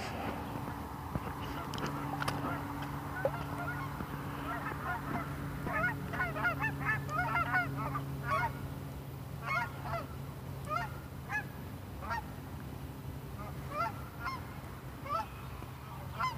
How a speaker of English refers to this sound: I mean, where is that goose? I hear it. Oh, it's a bunch of geese. Hello. Good morning, goslings.